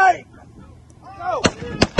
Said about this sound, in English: They exploded the pig. But it was loaded with a bomb. What in the fuck did he shoot that pig with? Unless they had Tannerite strapped to the pig and they hit it with a high-power rifle.